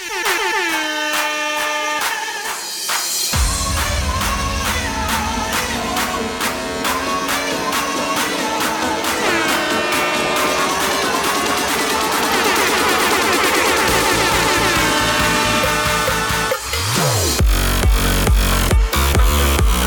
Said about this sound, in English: Every stream in September, we gotta play it. Air horn!